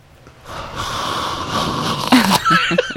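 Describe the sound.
A voice imitates a CPAP mask leaking air when the mouth is opened while wearing it, a sustained breathy, hissing wheeze lasting a couple of seconds, ending in a few short raspy snorts and puffs.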